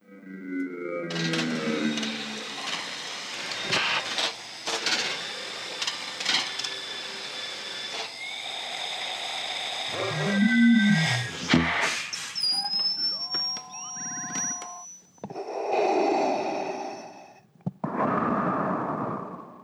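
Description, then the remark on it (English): A busy run of mechanical clicks, whirs and rising electronic tones as a mask is fitted, followed by two loud, hissing respirator breaths, an inhale and an exhale. “our final sound in the book. Vader's mask on and breathing.”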